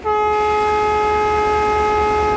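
A loud, steady train horn blares at Crveni Krst railway station in Niš after a brief pause and holds one unbroken tone to the end, with a low rumble underneath.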